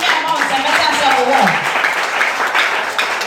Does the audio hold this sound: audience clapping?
yes